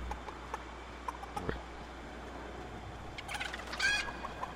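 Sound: chicken clucking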